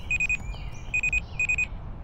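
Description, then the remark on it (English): Three quick bursts of high electronic beeping from a lipstick radio repeat in a steady pattern, each burst a cluster of sharp tones, over a low rumbling background. “Just then, Possum's lipstick radio started beeping.”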